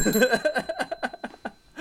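A 'politics bell' sound effect rings with steady, high metallic tones that hold throughout, layered over a quick run of rhythmic bursts that gradually fade before a final swell.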